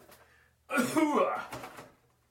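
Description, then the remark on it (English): A single loud throat-clearing cough lasting just over a second, rough and gravelly, with quiet background noise before and after. “pardon me. I need a cough button.”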